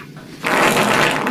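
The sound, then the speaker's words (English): A loud, airy fart erupts abruptly after a brief quiet moment and carries on as a steady, hissing blast to the end, with no talking. “He has on the mic set up for the farts.”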